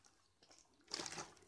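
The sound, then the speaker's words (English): A short burst of liquid sloshing as someone drinks from a water bottle, starting after a near-silent pause and lasting about half a second, fairly quiet, with no talking. “Where's the damn bottle? Oh boy. Yes, I'm looking for my water bottle.”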